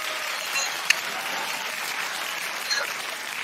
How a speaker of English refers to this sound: We got a lot of applause.